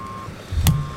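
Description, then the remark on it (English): A truck's reversing alarm sounds two steady, high beeps over a low engine rumble, with a brief sharp burst of noise in the gap between them. “What I need you to do is to back that fat, fat truck of yours up. Back it up right now. Back it up!”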